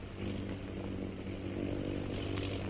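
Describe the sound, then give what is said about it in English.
Aircraft engines drone steadily overhead, a loud, continuous low hum with a buzzing, harmonic edge that holds without a break throughout. No voices are heard. “Do you hear those planes, Bhutan?”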